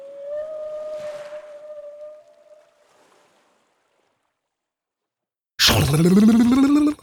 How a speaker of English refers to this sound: Killer whales clicked and hummed as they circled the shadows of the wreckage.